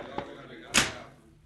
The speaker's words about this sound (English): Shut up until I close the door.